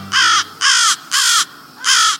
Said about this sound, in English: American crows stream by overhead in the late afternoon, rivers of crows. These are crows on a mission. They're headed to their night roost, a giant avian slumber party.